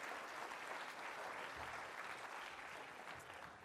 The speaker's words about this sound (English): Round of applause for my volunteer as well. Thank you.